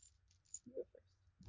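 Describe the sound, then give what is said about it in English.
Dice rolled for a lion in a tabletop game clatter softly across a table, a few quick light clicks and rattles, then a voice cuts in at the very end. “You want to roll for the lion?”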